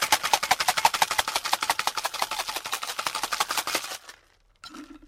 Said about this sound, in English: So ideally, that's where you want a lot of ice in, because then it will cool it much quicker and you only need to give it a short, sharp shake for it to be cool. You don't want it to be too wet.